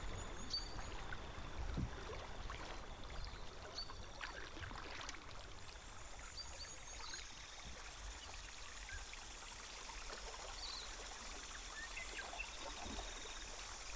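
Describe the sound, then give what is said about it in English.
Water of the Whanganui River flows steadily and continuously, a soft rushing texture with occasional small splashes and trickles, and no voices. “I would record long stretches for him and just make a playlist of sounds from the Whanganui River for him to listen to.”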